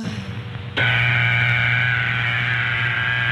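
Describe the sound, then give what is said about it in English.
A telephone dial tone, the equipment's signal that it is ready to put through a call, starts abruptly after a brief low rumble and holds as a steady, buzzy, unbroken hum for over two seconds, loud and with no voices over it. “The dial tone is the equipment's way of telling you that it's ready to put through your call.”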